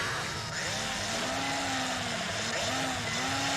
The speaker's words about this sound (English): Yeah, that machine is drilling right through any kind of obstacle. If it is concrete or...